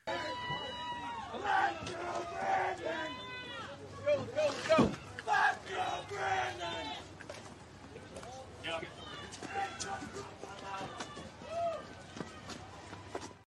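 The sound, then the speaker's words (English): A large crowd chants "Let's Go Brandon" loudly in rhythmic, repeated bursts of shouting voices, heard from inside a press car, with some scattered yells between phrases. “The Let's Go Brandon chant is so loud that you can hear it from the press vehicle.”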